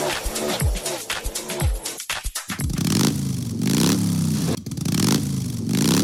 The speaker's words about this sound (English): Well, race fans, the motorcycles are already rolling in from all over the country. Well, matter of fact, all over the world as we get ready for the 83rd annual Bike Week.